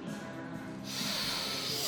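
A steady nasal sniff of a glass of hazy, straw-to-amber coloured beer, drawing in air for about a second with a soft hissing rush, after a brief quiet moment. No one speaks.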